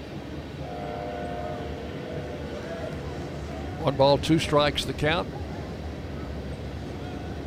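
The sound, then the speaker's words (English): A freight train with many tanker cars rumbles steadily past during a baseball game as the rain stops and skies clear, a continuous low roar with faint tonal lines early on, while a man briefly speaks over it partway through. “A lot of tanker cars on that train.”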